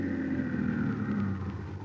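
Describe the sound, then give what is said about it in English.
A car pulling up in front of a house, its engine giving a steady low rumble with a faint mechanical whine on top, holding an even level throughout with no voices. “But then the time came, and he was pulling his car up in front of the house where he was to meet the man with a foreign accent.”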